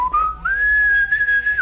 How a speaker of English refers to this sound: And I whistle as I'm walking away.